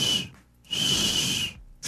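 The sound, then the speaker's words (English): Someone tries to whistle but mostly blows air: two breathy, hissing bursts with only a faint thin tone in them, and a third starting as it ends. “You sound like you're just blowing air out.”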